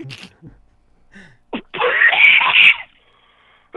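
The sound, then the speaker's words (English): A few short, muffled throat sounds lead into one loud, raspy coughing burst lasting about a second from a man coughing while smoking Reggie, followed by quiet. “Man, he's coughing when he's smoking Reggie.”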